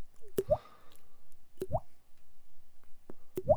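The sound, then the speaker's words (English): A voice imitates water dripping from a sink tap, making three crisp, hollow plopping drips spaced about a second and a half apart, each with a sharp click and a rising pitch. The sound is fairly quiet. “I can do a drop of like your sink dropping water.”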